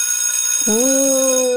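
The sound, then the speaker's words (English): After a brief quiet moment, a school bell rings out loud: a single bright, sustained tone with a clear ringing pitch that holds steady to the end, with no voices. “Ooh, Professor Class is in session. I love that bell.”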